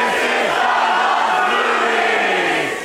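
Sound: audience yelling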